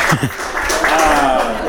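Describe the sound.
A crowd applauding with scattered clapping, mixed with voices calling out and chattering over the noise, steady and fairly loud throughout.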